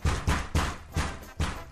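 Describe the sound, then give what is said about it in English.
Knocking at a door: five heavy, dull thuds in an uneven rhythm, two quick raps, a pause, then three more, fairly loud and heard alone without voices. “There's someone at my door right now.”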